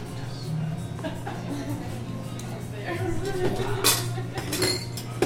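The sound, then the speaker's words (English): Ice cubes clink against a glass as ice is added to a cherry blossom cocktail made with Plymouth Slow Gin, a few sharp, bright knocks in the second half, with a steady low hum and faint voices murmuring underneath. “Let me grab ice.”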